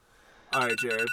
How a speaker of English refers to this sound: Didn't even set an alarm. It's fucking going off.